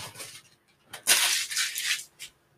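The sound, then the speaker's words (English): A dog chews on something hard, making irregular crunching and gnawing bursts, with a loud sustained crunch in the middle and a short final snap. No one speaks. “So, sorry guys, my dog is chewing on something. I don't know if you can hear it.”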